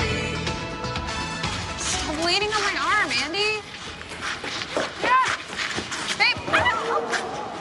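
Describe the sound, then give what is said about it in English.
A small three-legged dog named Roddy yips and whimpers while being held and peeing, with drawn-out high whines in the middle and a few sharp yips toward the end, over a steady background of people talking. “I'm holding the dog.”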